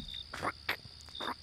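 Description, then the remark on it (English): A person imitates a cricket with a few short, raspy chirps in an uneven rhythm, fairly soft, with a faint steady high whine underneath and no talking. “That's the worst cricket sound I've ever heard.”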